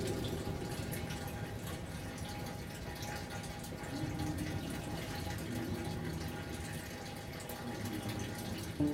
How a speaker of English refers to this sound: And this is one of the three springs inside the church. And if you listen carefully, you can hear the water.